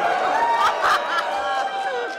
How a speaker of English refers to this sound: This is bringing out all the passion, the passion. Listen. Don't worry, I'm pretty sure this time, even though you are booing and you're upset, and I understand